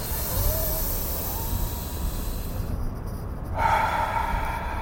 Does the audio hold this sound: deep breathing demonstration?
yes